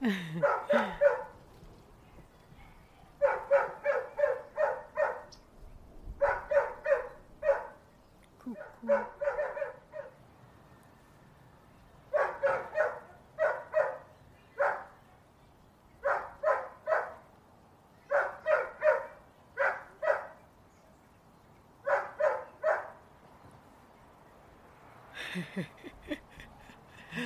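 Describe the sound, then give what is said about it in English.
A dog named Minu barks insistently in quick bursts of three to five sharp, high-pitched yaps, pausing briefly between clusters, with a faint whimpering whine at the start and near the end. “I do not understand any of the dog language.”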